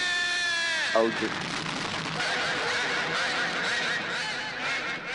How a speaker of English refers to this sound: Oh, sorry, that was my ringtone. Somebody's calling. Yeah, I thought I had set the mute.